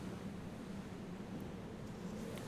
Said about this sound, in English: As you continue onward, you will eventually make your way toward the shore. The chill sound of the wind rushes around you.